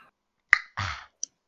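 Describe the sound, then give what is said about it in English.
Someone imitates a bong rip with their mouth: a sharp wet pop, then a brief breathy, gurgling bubble, and a final tiny click. There is no speech. “I was trying to do a bong rip noise.”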